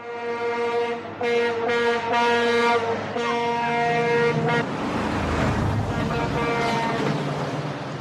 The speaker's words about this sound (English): And cars are like, beep, beep. She almost gets pancaked by a semi.